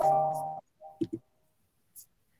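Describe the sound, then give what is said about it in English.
A loud phone ringer sounds a steady, buzzy electronic tone for about half a second, followed by a brief softer beep and a few sharp clicks. “I have to mute that phone. My bad. Your ringer is like on 10 billion.”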